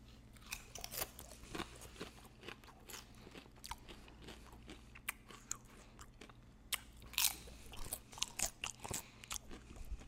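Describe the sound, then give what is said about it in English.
Wet, smacking mouth noises from someone chewing food with open lips, a steady run of irregular sharp clicks and crunches over a low background hum, with no talking. “Smacking, niggas be smacking, smacking.”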